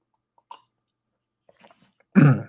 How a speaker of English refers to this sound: Why I'm like having to clear my throat, I don't know. Sorry about that.